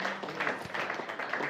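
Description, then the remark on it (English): A crowd applauding a musician's performance at the Royal on a Friday night, a dense steady wash of many hands clapping at once with a faint murmur of voices mixed in, holding at an even level for the whole stretch. “Tell the crowd liked it.”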